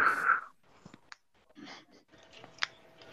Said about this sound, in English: you're breathing heavy, bud. What? Oh, you just went upstairs.